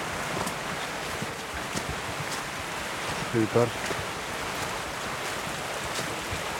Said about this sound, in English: Even the footpath has its waterfall. You can really hear the stream beside me. An unnamed stream as far as I know.